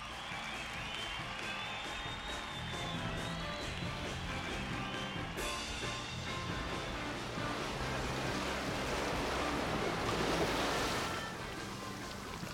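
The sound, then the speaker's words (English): Steady rushing water, like waves or surf, fills the scene continuously, with faint tonal music playing quietly underneath, swelling slightly toward the end. No one speaks. “And what else do we hear in the background there besides some water”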